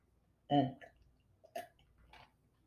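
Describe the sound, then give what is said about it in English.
A loud slurp of hot, reheated coffee, with a short vocal gulp first and a couple of wet sipping noises after, with no talking. “My bad for the hard slurp. My coffee hot.”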